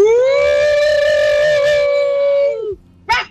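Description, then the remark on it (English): A spooky voice holds one long, steady, howl-like wail for over two seconds, trails off, and after a brief pause ends with a single sharp bark, as if imitating a dog. “Whoa, the bark at the end was very spooky.”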